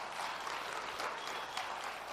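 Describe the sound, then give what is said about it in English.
Sustained applause from an audience thanking a speaker at a morning church service, a dense steady patter of many hands clapping with a few faint cheers mixed in, holding an even level throughout. “I think you got a louder cheer than Brad did.”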